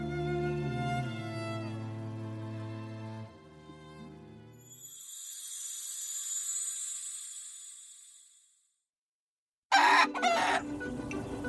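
A rooster crows in a long, drawn-out call that fades into a high thin tone, then after a short silence a chicken bursts into loud, agitated clucking and squawking.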